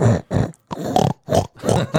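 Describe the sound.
A person imitates a pig, producing five or six loud grunting snorts in a choppy rhythm with short gaps between them, no other sound around.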